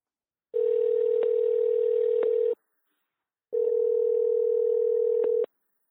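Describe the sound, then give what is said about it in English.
A telephone dial tone hums in two long, steady bursts separated by a brief silence, with a few faint clicks on the line and no voices, as a phone call is being placed. “So let's get him on the phone.”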